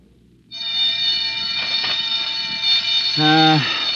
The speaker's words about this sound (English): There's the yard bell. Duty calls. I don't want to be late.